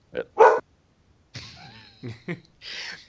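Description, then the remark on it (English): A dog in a Star Wars scene barks twice in quick, sharp bursts, then follows with longer, strained yelps and whimpering noises, moderately loud with no talking. “And a dog appears.”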